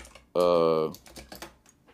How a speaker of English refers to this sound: Typing away as I was saying, I want to find this.